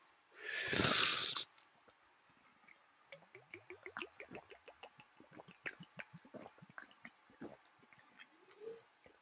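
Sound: drinking water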